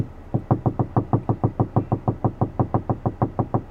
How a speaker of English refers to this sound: Did you hear the type of knocking?